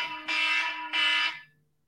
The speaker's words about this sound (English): Sorry, I don't know why my alarm went off.